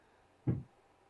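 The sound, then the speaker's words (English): A single soft, dull click of a computer mouse button pressed once, clicking a dice button to get a random song idea, heard alone against a quiet background. “All right, what is the enter your song idea here or click the dice to get a random one? We'll just do the dice.”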